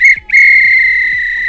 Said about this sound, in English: This was a real bit of extra time. This is when the ref would blow the whistle because it's finished.